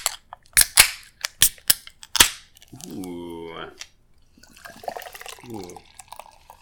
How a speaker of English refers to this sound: Anyway, second cracking of a beer.